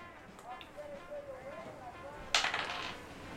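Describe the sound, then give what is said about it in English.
Dice clatter across a hard tabletop in a short burst of quick rattling clicks, fairly loud, following a stretch of faint murmuring voices; the roll comes up as a 3. “Hey, it came up as a 3. I didn't make these decisions. The dice did.”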